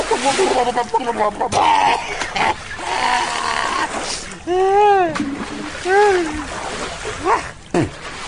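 Water splashes and splatters in bursts, joined by loud bleating, goat-like cries that rise and fall over the noise.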